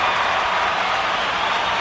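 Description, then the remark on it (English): A canned applause effect: a dense, steady wash of many hands clapping at once, loud and sustained without pauses, with no voices over it. “And we'll kill the applause.”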